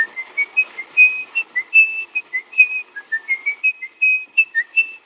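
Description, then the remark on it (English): A man in a film whistles a lilting tune alone, a quick series of clear, bright notes that rise and fall in a steady melodic rhythm, moderately loud with no talking. “But yeah, there is that sort of creepy element where he whistles a song, and that's how you know it's him.”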